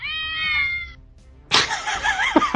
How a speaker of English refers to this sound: Is that my official intro now? Some lady screaming at her cats and cats meowing back.